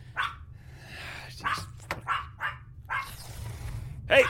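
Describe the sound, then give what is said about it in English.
A dog barks in a string of short, sharp yaps spaced unevenly through the moment, moderately loud over a steady low hum, while someone tells it to stop barking. “I don't want to hear any more barking from you.”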